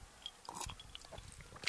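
Quiet sipping of Jameson whiskey from a glass: a few soft slurps and wet mouth sounds, a swallow, and faint light glassy ticks. No one speaks.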